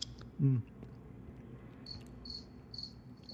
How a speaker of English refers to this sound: Is that real crickets or something? Those are real fucking crickets. Yeah. Those are Canadian crickets. They're actually Canadian crickets.